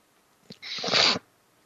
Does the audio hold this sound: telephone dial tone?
no